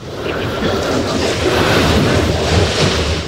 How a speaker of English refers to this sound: Yes, you're hearing waves.